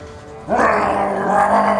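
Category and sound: vocal imitation, imitated dragon roar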